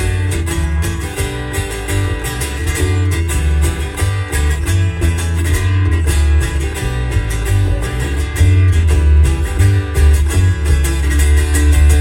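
A live band performance plays steadily and loudly, with a heavy, pulsing low end, dense layered instruments and repeated rhythmic strikes throughout, no speech over it.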